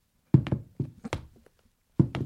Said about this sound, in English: I'm going to Foley not it on here. The table, yeah. Okay. Let's lock it down. Footsteps, take one.